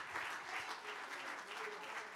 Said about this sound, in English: Come on, let's give them a hand. Let's clap our hands unto the Lord. Thank you, my brothers and sisters.